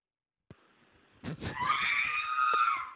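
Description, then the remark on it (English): A cameraman's voice imitates the R2 droid's electronic scream: a couple of sharp bursts, then a loud, high, steady wail held for over a second. “Okay, I like the R2 scream guy.”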